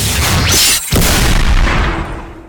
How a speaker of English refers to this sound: Oh yeah, the big gunshot.